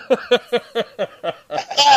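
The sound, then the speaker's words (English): A goat bleat from a soundboard: a rapid string of six or seven short, nasal, wavering pulses that run into a longer, louder, rising bleat at the end. “I get the soundboard all set up for giving you a bad time tonight, and it winds up, you know, smacking me right back in the face.”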